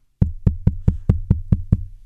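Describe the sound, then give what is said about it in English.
Seven quick, evenly spaced knocks on a lid, fairly loud, each with a short hollow thud. The rhythm is steady, like a heartbeat, and no one talks. “That's not your heart beating. No, I'm knocking on the lid.”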